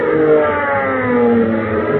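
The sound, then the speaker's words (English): A loud, steady airplane engine sound effect, made by a radio sound effects man for Tailspin Tommy's aeroplane, drones for about two seconds, its buzzing, layered hum wavering slightly in pitch with no voices. “Tailspin Tommy in his aeroplane.”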